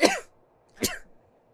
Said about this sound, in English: I gotta sneeze.